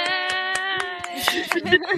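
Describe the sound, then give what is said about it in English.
An audience claps for a visitor in a handmade steampunk costume, in a steady rhythm at first, then the claps grow looser and denser, all over a sustained, buzzing harmonic tone. “So everybody clap for him.”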